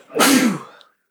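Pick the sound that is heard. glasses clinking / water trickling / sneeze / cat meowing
sneeze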